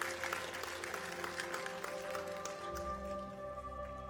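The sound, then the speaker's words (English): An audience in a church service claps their hands in praise of Jesus, a dense, steady applause lasting several seconds, with sustained organ-like chords ringing underneath that grow more prominent toward the end. “Would you give Jesus a hand clap of praise today?”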